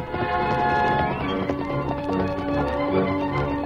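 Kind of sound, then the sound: animal, horse hooves galloping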